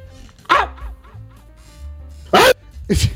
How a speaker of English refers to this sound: Isn't it, Shit Wizard, can you give us a good bark? Oh yeah, that's a big.